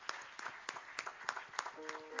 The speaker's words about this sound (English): with a warm reception via a hand clap of appreciation at this time. God bless.